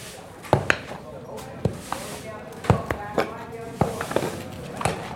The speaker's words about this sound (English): Stand beside them, they're like small buildings. You feel that if they step on your foot, it would be cartoon flat. To give you an idea, listen to this horse walking in the stable. Bearing in mind that a normal horse would make a clip-clopping sound.